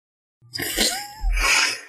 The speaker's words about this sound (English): Six sneezes.